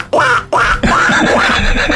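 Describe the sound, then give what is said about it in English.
A person imitates a duck's quack with a practiced duck call, voicing a few loud, nasal honks, the last one drawn out and wavering in pitch, with no other talking. “but I was like, I've practiced the duck call.”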